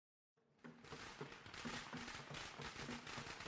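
firecrackers going off

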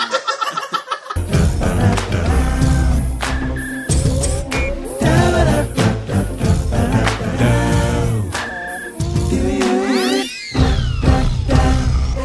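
cat meowing

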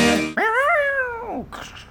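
cats yowling

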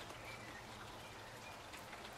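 rain falling

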